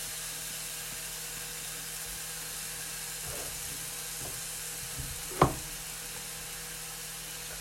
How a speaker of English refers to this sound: Oh, the sizzle when you put it down. It's so good.